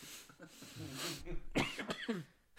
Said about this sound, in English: That cough does not help our case.